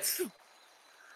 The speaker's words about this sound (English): Bless you.